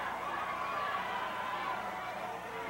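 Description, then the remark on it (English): A large wrestling crowd roars and cheers as wrestler Michael Hayes leaves the ring, in a steady, dense wash of noise that holds at an even, fairly loud level without pause for the whole stretch, with no clear voice rising above it. “Michael's still lobbying with Freebird Buddy Roberts as Michael leaves to the cheers of the crowd.”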